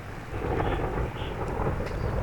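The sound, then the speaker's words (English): A low, continuous rumble of thunder rolls on steadily for a couple of seconds, deep, with no voices over it. “Where's my thunder?”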